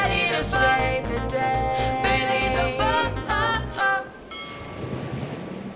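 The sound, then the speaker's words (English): Bailey the Boat churns through wavy ocean waters across to the bay and on to Harbor Park, its steady watery rush running beneath a bright musical jingle that cuts off near the end, leaving the surging water and a faint hum alone. “Bailey Boat powered forward through the wavy waters and finally reached Harbor Park, where Pacey Plane was there waiting in the wings.”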